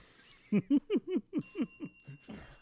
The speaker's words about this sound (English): We need another mic for that bell. We need another bell.